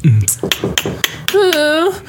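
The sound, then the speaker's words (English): Five sharp, evenly spaced knocks on a basement door land about a quarter second apart, followed by a short drawn-out vocal sound from someone as the knocking stops. “Is someone knocking on the basement door?”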